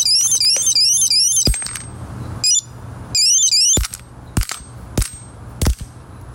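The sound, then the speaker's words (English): A shrill, warbling electronic alarm from an anti-theft device beeps in rising-falling bursts while sharp, loud hammer blows strike it repeatedly to silence it, about six impacts at irregular intervals, with the alarm cutting in and out between hits. “You're listening to the death of an anti-theft device with a hammer.”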